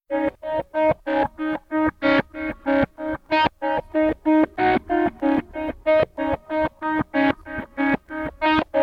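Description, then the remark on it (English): A music recording drenched in reverb, delay and Phase 90 effects, with rapid, evenly pulsing tones whose repeats trail forward like a delay echo. The sound is loud, steady and continuous, and no one speaks. “The other thing we did is, the echoes that you're hearing there are kind of like going forward.”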